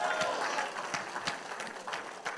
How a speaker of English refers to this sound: Let there be a praise and a clap to God here in this place.